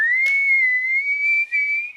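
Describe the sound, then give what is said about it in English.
A person whistles a single sustained, steady note that rises slightly and wavers, loud, with a brief breathy burst near the start and no talking. “So if I whistle at you on the street, will you look?”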